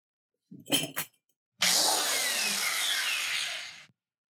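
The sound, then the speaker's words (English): A couple of short mechanical bursts, then a power drill whirs steadily for about two seconds before cutting off. It is fairly loud, with no talking. “So, do you have a drill?”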